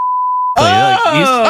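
A steady, high-pitched censor beep holds for about half a second, then cuts off abruptly as a loud voice breaks in with a drawn-out, wavering vocal sound.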